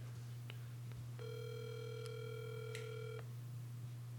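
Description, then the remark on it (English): A single ringing tone from an outgoing phone call to a woman, one steady electronic burst lasting about two seconds, heard over a low constant line hum with a few faint clicks before it and no talking. “I feel kind of bad calling her.”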